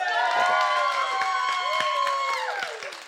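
An audience at a talk claps and cheers steadily to welcome the speaker, with a dense wash of applause under several sustained high whoops and shouts that slide and fade toward the end.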